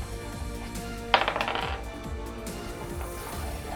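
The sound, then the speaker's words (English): A small die is rerolled for an attack roll, clattering onto a hard surface with a sharp impact followed by a quick series of diminishing bounces and rattles over about half a second, fairly loud, with no talking. “What was the attack roll? I need to do it again because it landed on, lodged onto the keyboard.”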